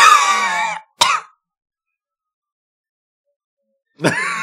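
A loud, theatrical signature cough, drawn out with a voiced, groaning strain, then a sharp hack, a few seconds of silence, and another raspy cough burst.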